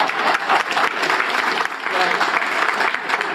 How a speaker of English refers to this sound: Oh, that deserves a round of applause.